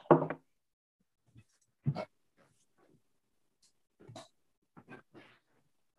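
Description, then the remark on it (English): Cats making noise at night: several short, irregular bursts of growly, whining animal sounds, a couple of them louder and harsher, separated by quiet gaps. Nobody speaks. “Fucking cats tonight and making all this noise.”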